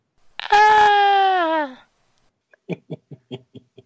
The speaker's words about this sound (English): I was the only one that screamed.